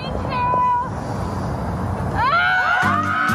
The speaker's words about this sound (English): Women screaming to get off their frustration. Moms in Boston.